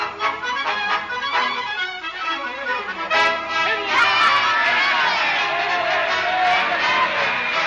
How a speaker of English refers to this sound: Haven't you ever been to a political rally before? They'll yell at anything.